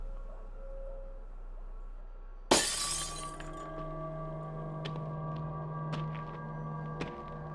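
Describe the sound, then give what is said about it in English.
A kitchen window pane of a house is broken in daylight to get inside, shattering in one sudden, loud crash after a quiet stretch, then a lingering ring and a few scattered tinkles of falling shards. “We can get in through the kitchen window.”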